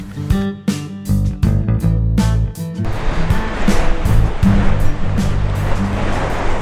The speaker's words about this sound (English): On this very, very windy day. Oh, I have come down to a fantastic beach to do some panorama 617 photography.